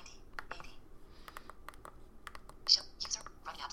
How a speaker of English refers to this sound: I'm going to hit Caps Lock Control V on this tiny keyboard. Very small keyboard. And let me hit Page Down, which is Function Down Arrow.